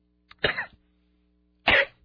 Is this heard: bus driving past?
no